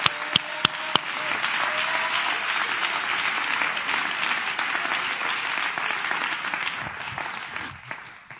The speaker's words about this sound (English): Come on, clap your hands to the Lord and give Him praise right now.